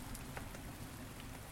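Steady rain falls and patters on a surface, a continuous soft hiss with scattered droplet taps, fairly quiet and unbroken, with no voices.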